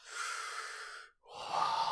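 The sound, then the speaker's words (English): A voice does an exaggerated, loud breathing imitation: a long, breathy exhale, a brief pause, then a sharp, forceful inhale, with no words spoken. “It's easy to forget, but breathing. And it's just 20 episodes of...”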